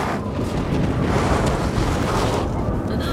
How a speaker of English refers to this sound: what was that? Sounded like thunder.